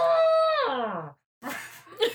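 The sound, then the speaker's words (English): A voice imitates an elephant trumpeting: one loud, brassy, drawn-out blare that holds steady, then slides downward and cuts off. After a short silence, people start talking. “Do we have an elephant? Someone want to check the cargo bay?”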